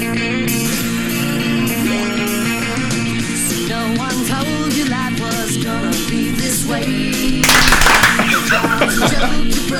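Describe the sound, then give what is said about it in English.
An upbeat pop-rock theme song with guitars and vocals plays throughout. Near the end, a burst of sharp, rhythmic handclaps cuts in loudly over the music. “It's like everybody, there's the clap.”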